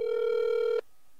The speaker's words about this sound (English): Apparently, they have no voicemail, so it's just going to ring forever.